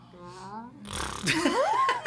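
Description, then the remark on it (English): A voice makes a wet, buzzing fart imitation, starting with a low voiced rasp and breaking into a sputtering, noisy blurt with rising squeaks; moderately loud, about two seconds. “Farting?”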